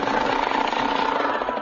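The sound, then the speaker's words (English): A Rosebud Junior Assassin toy machine gun, played as a solo instrument in a musical performance, rattles in a fast, continuous mechanical clatter, steady and fairly loud, holding an even buzzing rhythm for under two seconds with no voices over it. “The soloists in tonight's performance are Little Timothy on the Rosebud Junior Assassin Machine Gun.”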